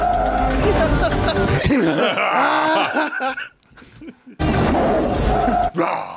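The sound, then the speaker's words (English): A tiger roars loudly in two long, rough bursts, with a brief quiet gap between them and a short final growl at the end. “That tiger was on the sidelines laughing at his ass. Did you hear that?”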